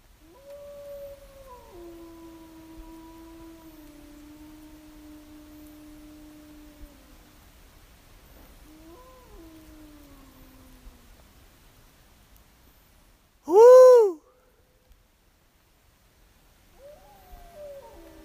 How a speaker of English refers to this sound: to count wolf populations, they would actually howl, and the wolves would howl back